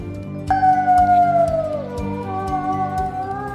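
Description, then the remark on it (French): A wolf that has been badly burned lets out one long, pained howl that starts suddenly, slides downward in pitch and trails off, loud, over steady rhythmic background music. “Le loup a hurlé parce qu'il s'était grièvement brûlé.”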